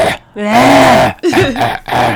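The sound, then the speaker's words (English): A loud rasping cough with a gravelly throat-clearing quality, in a couple of strained bursts over about two seconds, with no other sounds around it. “I'm coughing.”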